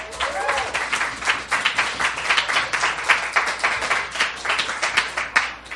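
An audience at an evening op-ed reading show applauds a performer, many hands clapping in a dense, continuous patter that holds fairly loud for several seconds, with a brief whoop or cheer near the start.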